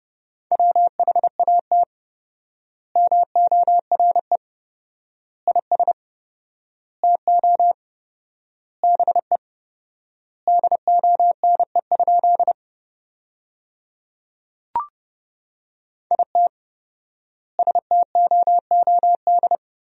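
Morse code sent at 30 words per minute, spelling out sentences built from the 500 most common words with four times the normal word spacing: a single steady mid-pitched beep keyed in quick dots and dashes, grouped into bursts with long pauses between words, no voices, and one brief click.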